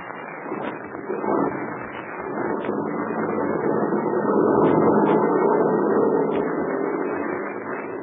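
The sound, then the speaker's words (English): A heavy truck engine is started and rumbles steadily, building to a louder, fuller growl midway before easing off slightly at the end as the truck pulls away from a headquarters and lumbers down a narrow mountain road. No voices. “The heavy truck was started. It pulled away from the headquarters of the red-whiskered Captain Blaze and lumbered down a narrow mountain road toward a river that cut through a narrow gorge.”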